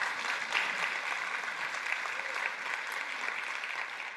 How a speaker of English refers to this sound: we can clap for that.